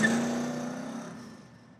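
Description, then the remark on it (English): A car engine hums with a steady low drone, revved up to drown out a man's cry, then gradually fades as the car moves away carrying him. No voices are heard. “And I took him on my shoulders and brought him up the ditch, put him into the car, closed the car, and we put him to the rear side, and we moved.”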